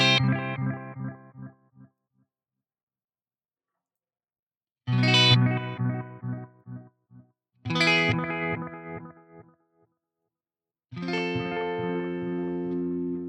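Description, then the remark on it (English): An electric guitar played through an analog delay pedal, its echo not affected by the pedal's vibrato circuit, four separate bursts of notes each trailing off in a string of fading repeats, with short silences between them and no talking. “And so there's the actual echo effect is not being affected by the vibrato circuit right now.”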